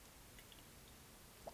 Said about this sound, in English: So I'm actually gonna take a little sip of water in my Hydro Flask.